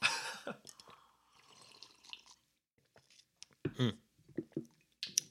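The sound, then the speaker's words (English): Wet sipping and gulping as someone drinks reverse osmosis water to cleanse their palate between cocktail tastings, a few squishy swallows and mouth sounds in short bursts with brief quiet gaps between them. “I'm going to cleanse my palate with our reverse osmosis water.”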